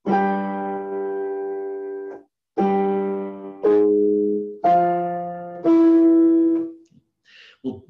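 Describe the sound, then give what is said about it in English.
A string quartet opens Beethoven's Große Fuge (Grand Fugue) with an imperious gesture: a long, loud held note, then several forceful sustained notes separated by brief pauses, ending with a few faint trailing sounds. “One is in the Beethoven string quartet, which we call the Große Fuge, the Grand Fugue, the Great Fugue, which starts with this very imperious gesture.”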